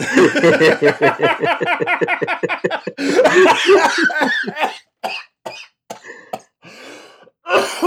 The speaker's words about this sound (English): sounds like he's fucking coughing up a lung.